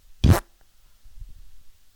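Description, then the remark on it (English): A single short, loud raspberry blown with the lips as a thumbs-down, a wet buzzing burst lasting a fraction of a second, followed by quiet low rumbling and faint breathy noise. “People don't know because that was a thumbs down with a fart noise.”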